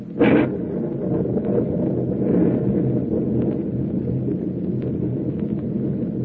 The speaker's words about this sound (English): This storm is rising in intensity every minute.